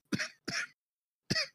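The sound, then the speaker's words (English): Three harsh, chesty coughs from a woman feeling under the weather with post-nasal drip: two in quick succession, then a short pause before a third, each a sharp burst that trails off. “Please leave that coughing sound in there.”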